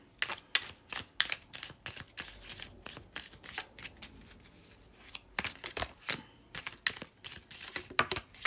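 Crisp card shuffling: a large deck, shuffled in two sections because there are so many cards, riffled in rapid bursts of papery snaps, with brief pauses between passes and no voices.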